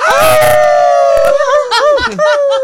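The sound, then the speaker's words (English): Several people on a radio show howl together like wolves for the station 96.7 The Coyote: one long, steady high tone at first, then overlapping wavering howls that rise and fall in pitch, loud throughout. “Now we're howling into the weekend.”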